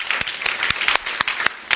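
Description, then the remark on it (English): A crowd claps steadily, a dense wash of hand claps with a few sharper, louder claps punching through at irregular moments. No one speaks over it. “Well, let's give Dean a round of applause and thank him.”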